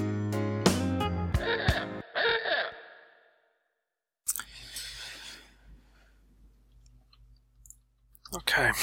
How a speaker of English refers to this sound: I know, I'm typing. I'm sorry.